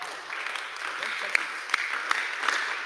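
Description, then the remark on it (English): An audience claps in a steady, fairly soft patter of applause, with a few sharper individual claps standing out over the dense rustle, while a faint murmur of voices sits underneath. “If you don't clap, no worries.”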